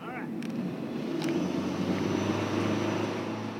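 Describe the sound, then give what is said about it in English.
A wake surf boat engine drones steadily on Lake Minnetonka at the 2017 Wake Surf Championships Adaptive Demo Day, a constant low rumble with a steady hum beneath it, while faint, indistinct voices and brief splashy clicks come through. “For now, let's head out to Lake Minnetonka for a listen to the 2017 Wake Surf Championships Adaptive Demo Day.”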